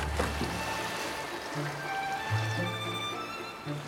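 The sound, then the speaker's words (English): River water flows steadily with a continuous rushing wash, and faint sustained tones hum underneath throughout. “Together, they pushed the vessel back into the current.”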